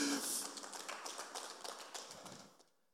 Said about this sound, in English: Come on, if you're going to clap, clap for real. Give God some praise in this house.